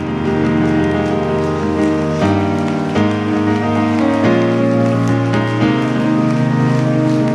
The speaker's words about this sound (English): Come on, can you put your iPads, iPhone, Bibles down and give a round of applause unto the Lord your God.